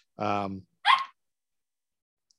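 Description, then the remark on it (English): A dog barks twice, a fuller, drawn-out bark followed by a sharper, higher yelp, then quiet. “Stop barking.”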